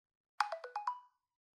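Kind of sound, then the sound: signal or alarm, mobile phone ringtone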